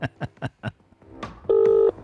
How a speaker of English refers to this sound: I'm just making a phone call, just calling someone.